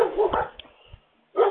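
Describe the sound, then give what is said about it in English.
Dogs bark in short, loud bursts, a quick cluster of barks followed by a brief pause and then another sharp bark. “God, pardon me and these dogs.”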